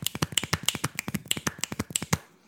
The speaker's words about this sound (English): Also, I do my world-famous snap, snap, clap, which sounds like this.